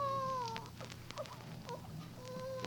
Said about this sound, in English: No, that wasn't no coyote. Why? It's a baby.